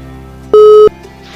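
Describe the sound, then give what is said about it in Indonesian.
A single short telephone-style beep as a phone call is being connected to a member of the MUI Fatwa Commission: a loud steady electronic tone lasting about a third of a second, heard alone against a faint background hum with no one talking. “Nanti kita akan bahas ya, kita akan mencoba sambungkan telepon dengan anggota Komisi Fatwa MUI,”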